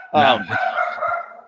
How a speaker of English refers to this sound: Sorry, it's my dog.